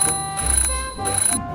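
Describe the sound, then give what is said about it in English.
An alarm clock rings loudly in short repeated bursts, a bright metallic jangle starting and stopping about three times, with a steady tonal hum underneath and no talking. “I'm an alarm clock.”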